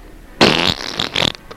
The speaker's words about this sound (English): Don't light any matches, Master. No, Igor, I have to fart again.